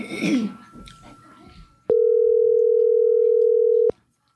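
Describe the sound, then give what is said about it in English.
A loud, steady telephone dial tone hums for about two seconds as a guest is called on the phone, starting and stopping abruptly, after a brief stretch of muffled voices and background noise. “So let's we're going to get him on the phone here.”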